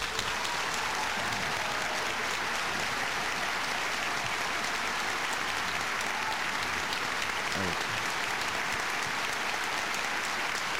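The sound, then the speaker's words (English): Sustained applause from a large audience following a line in a Ronald Reagan speech, a dense steady wash of clapping that holds at an even, loud level for the full ten seconds without fading. “Long applause.”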